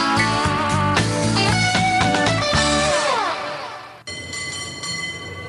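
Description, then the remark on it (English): San Francisco Bay Area cable car sounds: layered metallic whines and squeals over a rumbling rail clatter, easing off midway, then an abrupt cut to a steadier humming drone with high tonal ringing. No one speaks. “A little bit of cable car sound there.”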